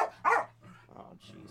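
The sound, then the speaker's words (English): A dog gives two sharp, loud barks, followed by softer muffled sounds that may be quieter barking or a voice in the background. “I gotta mute my mic so I can yell at my dogs and not have it recorded.”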